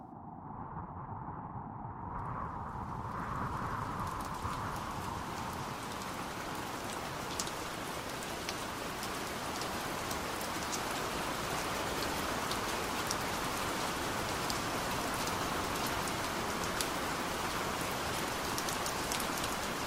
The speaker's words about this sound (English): The rain is pattering across London's rooftops. Smog limps round street corners and slips over the chimney stacks.